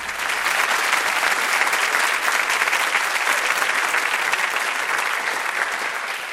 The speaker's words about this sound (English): It's a bit disturbing to have people be forced to clap for me.